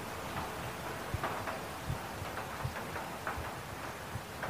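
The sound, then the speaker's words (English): Steady rain patters down on a roof, with scattered heavier drops clattering at irregular intervals over a soft, continuous hiss. Moderately quiet, with no voices. “Watch the way I splash and clatter on the roof, make the ground wet.”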